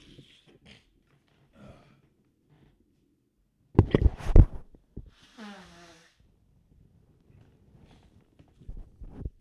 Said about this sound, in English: Oh, I knocked the mic down. Hold on. Let me fix this.